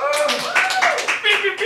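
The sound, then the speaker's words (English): An audience claps in a dense, continuous patter, voting by applause on whether stores should sell Christmas decorations before December, with voices cheering and calling out over the applause throughout the short burst. “Everybody's clapping for both.”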